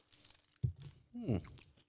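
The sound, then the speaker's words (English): Crunch of biting into a crisp chocolate wafer with a sugary wafer shell and a cream filling, followed by brief crunchy chewing and a short voiced murmur from the eater; no other sounds around it. “This is like, so this here, this is called a, this is like a crunchy, it's got chocolate, it's got maybe a shell, like a sugar, like a wafer shell, and it's filled with some sort of cream.”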